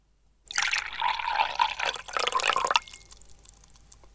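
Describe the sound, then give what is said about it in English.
Liquid poured live into a glass next to a microphone, amplified: a bright splashing, gurgling stream lasting a couple of seconds with rising pitch as it fills, then stopping abruptly into quiet. “Live for an amplified pour into the glass next to the microphone.”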